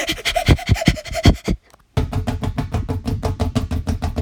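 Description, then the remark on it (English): A voice imitates someone running and running out of breath: rapid, heavy panting, a quick run of breathy huffs, then a brief pause before a faster, steady stream of short gasping breaths. “That was him running out of breath and being like.”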